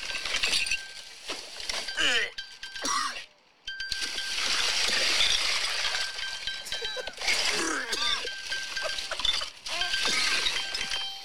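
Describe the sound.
Someone inside a dumpster rummages through the trash looking for a phone thrown in the garbage, with a continuous jumble of clinking glass, clattering and rustling debris that pauses briefly before resuming, as a voice breaks in now and then.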